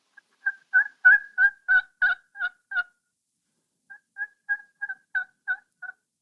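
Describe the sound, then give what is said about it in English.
Soft, subtle, pleading turkey yelps made on a turkey hunting call, two short runs of about eight evenly spaced notes separated by a brief pause, fairly quiet, with no talking. “You can make it with any call, a friction call or a mouth call. But it's soft and subtle, and it's very leading, or almost, how would I say it?”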